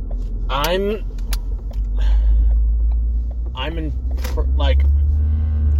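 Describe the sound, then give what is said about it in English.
A steady low engine rumble fills the inside of a moving car leaving a movie theater, stuck behind another vehicle, loud and constant, with a few brief vocal sounds and faint rattling over it. “I'm sitting here in my car, leaving the movie theater, with popcorn stuck in my teeth, and stuck behind this motherfucker who is just kind of sitting”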